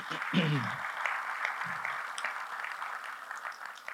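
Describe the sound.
A church audience claps steadily for several seconds, a dense, even wash of applause with a brief voice or cheer rising near the start.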